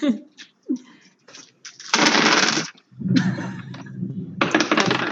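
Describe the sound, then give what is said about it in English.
A few clicks and taps, then repeated bursts of fabric-like rustling and rattling as a small bag of dice is opened and the dice are shaken and rolled for a knowledge history check in a game. “Should have opened my little bag of dice before I did this.”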